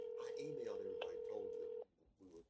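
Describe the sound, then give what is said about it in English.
A steady phone tone, as Paula Deen places a call to a strange number and it rings, hums loudly for nearly two seconds under indistinct talking, then cuts off, leaving brief quieter speech. “So let's see if she'll answer this strange number.”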